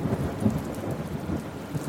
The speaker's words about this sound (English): The pitter-patter of rain begins to kind of pick up. You hear a distant rumble beyond the hills that you see.